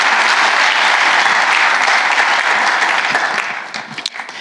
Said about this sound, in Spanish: ¿Están conmigo? Si lo quieres, dar un aplauso al Señor fuerte. Aleluya.